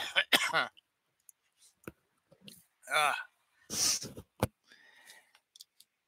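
coughing

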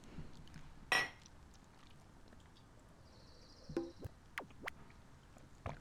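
mugs clinking together

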